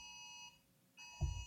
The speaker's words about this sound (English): It's my phone. Hang on. Okay. If it's for me, I'm not here. Is it a flash flood alert? No, it's a it's something else. Like, it's not bad. No worries. Let's go. Yeah, it's like a conserve energy alert.